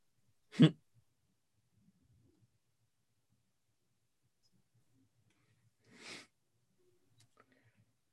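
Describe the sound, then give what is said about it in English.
Two raspy, wheezing coughs from the cyborg character Grievous, separated by several seconds of near silence: the first short, sharp and loud, the second softer and slightly drawn out, with no talking. “Grievous with that cough.”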